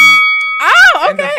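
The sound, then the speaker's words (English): A timer sounds with a steady, high electronic ring that holds for about half a second, then a person starts talking as the tone fades out. “No, that is my timer.”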